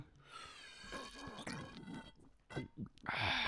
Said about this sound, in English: Now, as we like to do first sips